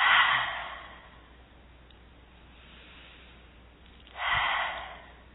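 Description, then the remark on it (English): An airy breath during a guided breathing exercise: a long exhale trails off, then after a quiet pause a deep breath is drawn in again. Soft, unhurried, with no talking. “Another one, deep breath in and out.”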